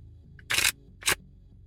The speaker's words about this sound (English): Maybe if I cut the cards in a kind of fancy way. Not very successfully.